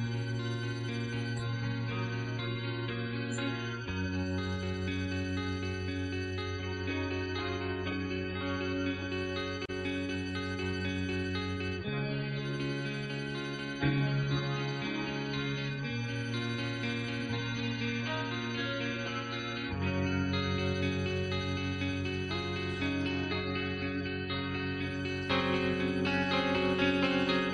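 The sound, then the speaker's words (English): A guitar with a shimmering tremolo effect plays sustained chords that shift every few seconds in a song's introduction, with sweeps across the strings, steady in loudness and washed in effects, with no voices. “Man, it's a tremolo that they have on there.”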